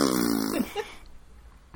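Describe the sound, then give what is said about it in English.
A voice blows a short, buzzy fart noise, standing for Fitz's mental reply to Night Eyes, lasting about half a second before trailing off into near silence, with a faint breathy sound at the very end. “Is that all of Fitz's skilling and witting is just fart sounds?”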